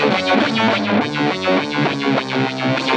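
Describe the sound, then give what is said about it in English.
Electric guitar played through a Solid Gold Effects Lysis fuzz and modulation pedal with a pulsing modulation effect, thick distorted chords swelling and dipping in a steady rhythmic wobble, loud with no voices. “Yeah, the Solid Gold Effects Lysis pedal.”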